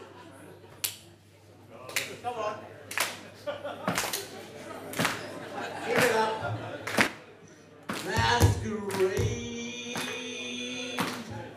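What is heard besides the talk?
slow hand clap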